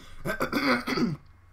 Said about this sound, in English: And I've coughed the entire time.